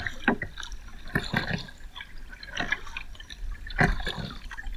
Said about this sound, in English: I just wanted to kind of give you guys a little bit of a relaxing, peaceful river time.